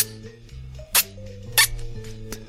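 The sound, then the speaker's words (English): A person imitates a mouse, a call used to lure barn owls, with three short, sharp, high-pitched squeaks, spaced about half a second apart, over a steady low hum. “And that's if you imitate a mouse, and that's by going...”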